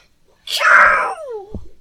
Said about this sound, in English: Sorry, I just sneezed.